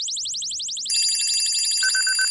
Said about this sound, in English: That's an alarm clock. That's not a siren.